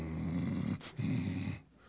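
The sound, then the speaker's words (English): A person imitates with their voice the growl of a dog by a driveway they walked past: two low, rumbling growls separated by a quick sharp breath, fairly loud, then fading into quiet. “I hope I'm connected real good here because I'm walking over here and that dog going.”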